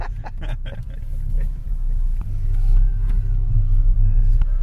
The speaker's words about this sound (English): Did your heart sink a little bit when your car started?